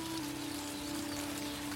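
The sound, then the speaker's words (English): Raindrops falling in a steady, even patter onto tables and chairs, a quiet continuous hiss of drops tapping hard surfaces with a faint low hum underneath and no voices. “It's raining all across the room. You're hearing the drops on your tables, your chairs.”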